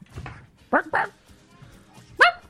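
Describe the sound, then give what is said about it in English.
A human voice mimics a dog barking: two quick, loud yelping barks close together, then a pause and one more sharp bark, with quiet low murmuring underneath. “My dog, Porkchop.”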